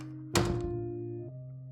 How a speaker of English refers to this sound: It moved slowly, like a pendulum, catching wooden beams and boxes with its light, spreading shadows momentarily before the door clicked shut.